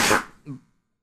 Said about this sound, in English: Cut that. Bless you.